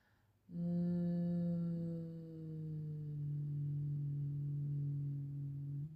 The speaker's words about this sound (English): Inhale, this time close your mouth and hum into your third eye.